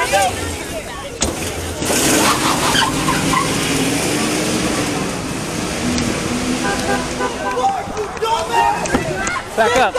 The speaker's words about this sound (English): You'll see the mob swarm a truck. The truck drives away, and in the chaos, ends up crashing.